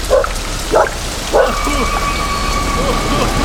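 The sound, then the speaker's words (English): Steady, heavy rain hisses throughout a stormy scene with a low rumble underneath, while three short bark-like yelps sound close by in the first two seconds. “What is this? I did not speak this storm into existence.”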